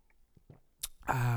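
A few soft mouth sounds lead into a quick slurping sip, then a loud, satisfied voiced exhale, as someone takes the last sip of a drink.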